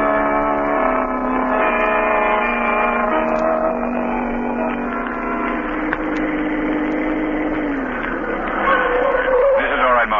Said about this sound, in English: Park the car right here.